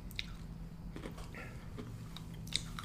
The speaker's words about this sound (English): Dude, this is a lot of chewing I gotta do. You know I don't got many teeth left. It's fucking brittle.